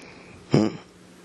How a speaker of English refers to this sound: Nothing. Just I was clearing my throat.